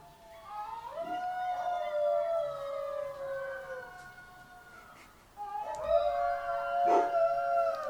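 A dog named Jax howls behind a shut door in two long, wavering cries, the first sliding slowly downward before a brief pause, then a second, louder howl holding a steady mid-high pitch.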